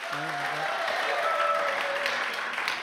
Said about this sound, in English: Crescendo clap, eh? Thought I'd heard it all.